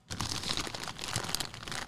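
A snack bag crinkles steadily for about two seconds, a dense, crackly rustle of plastic with small sharp crunches mixed in, moderately loud and with no voices over it.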